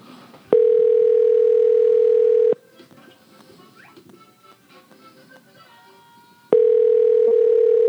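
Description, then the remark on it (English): A telephone ringback tone on an outgoing call: a loud, steady two-second hum, a pause of faint background noise, then the next ring starting, heard clearly through the line. “So if we get to the voicemail, that's what you're working with.”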